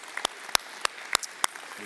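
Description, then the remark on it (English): An audience applauds people who have just decided to surrender their lives to God, five sharp, evenly spaced claps at a steady rhythm over a faint background murmur, with a voice starting up just at the end. “Here, but would you applaud for those who made that decision?”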